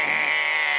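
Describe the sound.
Someone's voice imitates a wrong-answer buzzer: one flat, nasal, harsh buzz held steadily at a constant loudness for just under a second, with no other talking.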